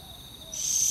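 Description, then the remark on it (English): A boobook owl, the smallest owl in Australia, calls faintly at night against a steady, high-pitched whine of night insects that grows louder toward the end. “Boobook owls are hard to see because they're nocturnal.”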